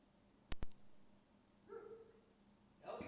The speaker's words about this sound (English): Get back in there and you be quiet. She's looking, seriously looking at me like if I stop talking, watch, she'll stop barking.